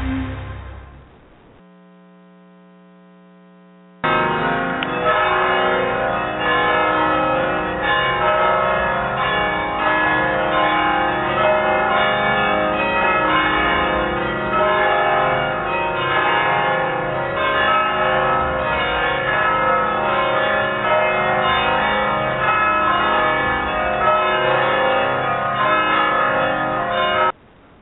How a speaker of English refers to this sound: those bells were from the Mission in San Juan Capistrano. Aren't they beautiful? They ring those bells every time somebody gets married.